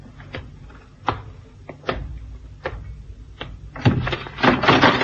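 A trap door on a ship bangs shut as someone goes down through it, amid a series of sharp wooden knocks and thuds, spaced irregularly, ending in a louder burst of clattering and rumbling impacts. No one speaks.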